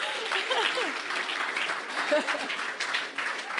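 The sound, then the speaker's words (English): Sustained audience applause for a teenager who was first to hand in his Sacred Assembly commitment, a dense wash of many hands clapping steadily at a fairly loud, even level, with faint cheering voices mixed in. “Yeah, give him another clap.”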